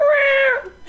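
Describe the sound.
A person imitates a cat's meow: one drawn-out, high, nasal note that holds steady for about half a second, then tapers off. It is fairly loud, with no other talk.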